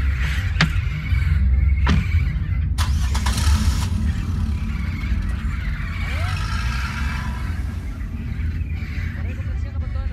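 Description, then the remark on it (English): A pickup truck engine rumbles low and steady at night, with a few sharp clunks early on as the truck starts to move. Its bed holds hundreds of caged young parrots, and faint chirps sound over the drone. “As the truck began to move”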